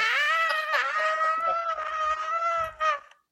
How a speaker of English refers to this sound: Yeah. That was a scream.